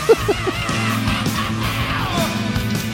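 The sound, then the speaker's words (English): A rock singer lets out a long, sustained scream over loud, distorted band music, holding steady for several seconds after a few sharp opening hits. “And it's one of the few times he does his epic scream in this weird ass section.”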